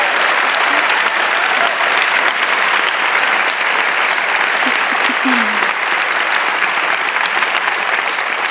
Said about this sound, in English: So could you please give these two stars, Anne-Marie Duff and Rory Kinnear, a big warm round of applause.